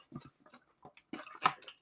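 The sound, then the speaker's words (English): Someone swigs a drink of pump water: a series of short, soft gulps and wet mouth clicks, irregular in rhythm, ending with a louder swallow and breathy release. No talking. “Oh, gonna take a swig. Drinking the old pump water.”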